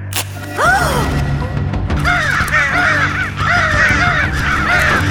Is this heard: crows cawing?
yes